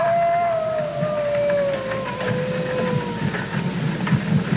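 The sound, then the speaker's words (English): A long, sustained wolf howl slowly sinks in pitch over a steady background rumble, carrying across the whole stretch with no voices present. “Werewolf. Werewolf? There. What? There, wolf.”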